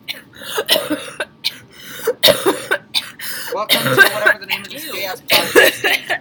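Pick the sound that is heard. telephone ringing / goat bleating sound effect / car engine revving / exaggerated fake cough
exaggerated fake cough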